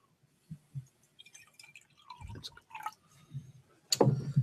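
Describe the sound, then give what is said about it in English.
Magners cider pours into a glass, with irregular glugging splashes and drips that build unevenly, ending in a louder fizzy burst. No one speaks. “Again, I'm pouring now. We're doing the Magners.”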